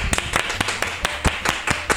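Applause at a Christmas show in a steady, even rhythm, about ten sharp, crisp claps over two seconds at a brisk pace, fairly loud, with no voices, welcoming two sisters about to play a Christmas song on piano and voice.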